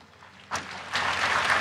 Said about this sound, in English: The Pope is clapping his hands, and I think the Pope is going to speak now as he listened there to Chief Wilton Littlechild, who was attended that residential institution where the Pope is right now for 14 years.